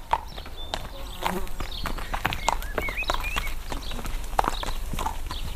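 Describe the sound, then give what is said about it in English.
Steady clip-clop of horse hooves on a hard street, a horse-drawn delivery cart passing at a walking pace, with faint chirps and a background voice. “If you needed a delivery, well, then you would listen for the cart that would be coming with its horses, you know, and you'd know the kind of sound that you'd be listening for.”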